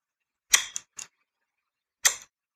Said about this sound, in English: Like turning on and off a light switch.